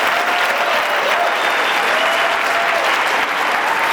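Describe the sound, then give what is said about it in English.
A large audience at an event applauds steadily, dense clapping at a constant loud level for several seconds without pause. “give a round of applause to Tom Kroll and his team for putting on such a crazy event”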